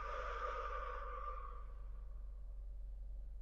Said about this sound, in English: And exhaling out of the mouth.